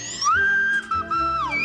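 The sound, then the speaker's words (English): A slide whistle sweeps upward, holds a wavering high note, then glides back down, played loud over a faint low accompaniment. “Now share with that special someone the sensual sounds of the romantic slide whistle.”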